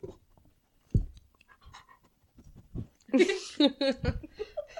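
A dog named Whitey Ford moves around with a few soft thumps and scuffs, then breaks into a short burst of excited panting and snuffly whimpering noises.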